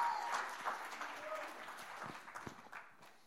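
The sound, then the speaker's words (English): A church audience claps together as a clap offering to the Lord, a dense, sustained wash of applause with some cheering voices mixed in, gradually thinning out toward the end. “Come on, give the Lord a good clap offering.”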